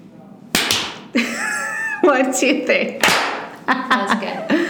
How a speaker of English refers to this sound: Let's clap.